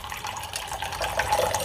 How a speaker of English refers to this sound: Chalk paint, and I thought maybe I'd put a little bit of water in here, and this stuff seems to be very dark.